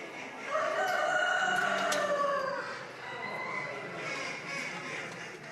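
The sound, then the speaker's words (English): A rooster crows loudly from a cage at a poultry show, a long harmonic call lasting about two seconds, followed by a busy backdrop of other fowl calling and clucking in a noisy indoor space. “People saying the wannabe runaway cock wasn't pen trained, just brought out of an open shed and into a cage today for the first time.”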